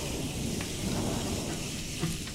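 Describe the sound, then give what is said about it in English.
Steady, heavy rain with a deep, continuous rumble of thunder rolling underneath, loud throughout, with no voices present. “there was a thunderstorm that bounced the earth back and forth like a cue ball on a billiard table”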